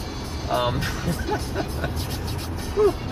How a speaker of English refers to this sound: Car.